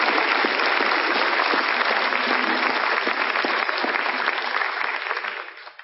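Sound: audience applause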